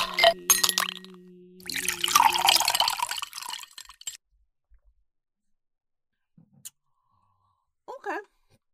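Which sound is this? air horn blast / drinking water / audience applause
drinking water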